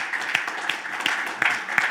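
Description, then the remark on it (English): A standing audience claps together to thank mothers in steady, dense applause, with a few sharper individual claps popping out of the continuous patter at a moderate, even level throughout. “Moms are like, I'm going to stand and clap too.”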